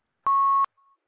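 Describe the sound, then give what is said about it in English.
A phone line beeps after a dropped call: one loud, steady electronic tone lasting under half a second, then a much fainter, shorter tone. No voices. “Oh, we lost our …. I don't know what happened.”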